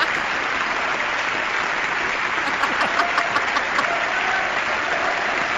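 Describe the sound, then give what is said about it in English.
A large audience gives a standing ovation, a dense wash of clapping that stays loud and even throughout, with a few sharper claps standing out near the middle. “Should we clap too?”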